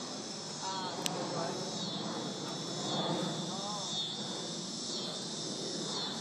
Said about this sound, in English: Okay. Go those cicadas.